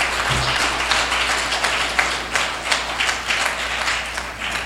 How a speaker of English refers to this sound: please receive her with an incredible round of applause.